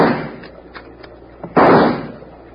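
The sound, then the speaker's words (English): A few faint pops give way to one loud, sharp rifle shot, fired from a pitching boat at attackers taking pot shots, whose crack fades out slowly over the next second. No voices are heard. “hand me that rifle, Doc”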